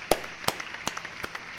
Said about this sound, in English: This is the scissor clap.